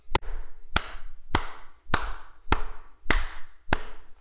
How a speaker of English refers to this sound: Applause